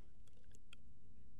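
A few soft, scattered keyboard taps click against a low background hum as someone brings up the AFLW ladder, with no one talking.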